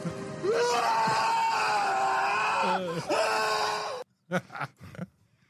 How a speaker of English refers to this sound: I find that clip a bit disturbing, if I'm being honest. It is. God, that's screaming, what it's meant to be.